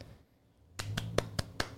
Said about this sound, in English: Yay, claps to Judge.